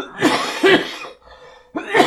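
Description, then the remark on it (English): A loud productive wet cough in two harsh bursts, the first a drawn-out hacking fit, followed after a brief pause by another rough cough, with no talking. “That's a productive cough, by the way.”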